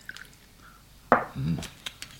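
A short pour of a little whisky into a glass: a sharp clink, then a brief gurgling splash lasting under a second, followed by a few faint drips.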